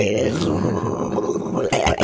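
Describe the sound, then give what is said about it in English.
A voice imitates a toilet flushing the other way, as in Australia, with a sustained, throaty, gurgling groan lasting about two seconds, ending in a few breathy, sputtering bursts. “It goes the other way when you flush the toilet.”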